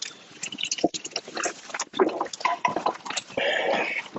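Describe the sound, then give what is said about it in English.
Crackling fizz of lemon-flavored Kirkland Signature sparkling water being drunk, with scattered sips and small liquid gulps, a busy, steady hiss of bubbles lasting a few seconds with no talking. “I am drinking a Kirkland Signature Sparkling Water. This is lemon flavored.”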